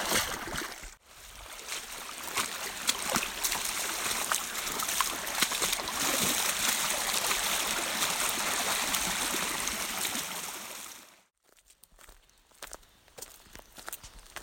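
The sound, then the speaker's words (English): Steady, loud splashing footsteps of a hiker wading down the middle of a shallow, rushing creek at one of its trail crossings, with a brief pause near the end before quieter sloshing steps resume. No one speaks. “One of 17 creek crossings, the data book said, so I was like, yeah, you know, why not just walk down the middle?”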